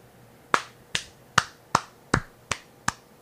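Eight sharp, crisp claps land in a steady, even rhythm, each a quick bright smack with a short tail, from a single pair of hands with no voices present.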